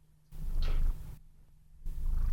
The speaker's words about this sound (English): So he was purring into the microphone a second ago. Let's see if he can do that again.